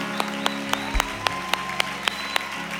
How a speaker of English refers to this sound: I see you. Clap it up. Clap it up. I see you.